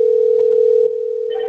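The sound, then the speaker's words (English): A Linphone SIP softphone's ringing tone sounds as a loud, steady electronic beep held without a break for over a second. It shifts slightly in character near the end, with no voices present. “This one I had hooked up to my, you can hear my, my Lin phone.”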